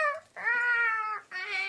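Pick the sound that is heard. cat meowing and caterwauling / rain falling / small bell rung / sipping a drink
cat meowing and caterwauling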